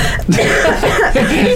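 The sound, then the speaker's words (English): A loud cough from a single person, a short burst of harsh throaty bursts lasting about a second and a half with no speech around it. “I have to cough.”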